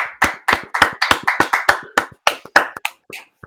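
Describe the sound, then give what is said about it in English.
Sharp, loud hand claps in a quick, slightly uneven rhythm, roughly twenty in a few seconds, trailing off toward the end, given as a round of applause for the Rangers' Igor Shesterkin. No one speaks. “Come on, let's give a round of applause, a standing ovation to Igor Shesterkin.”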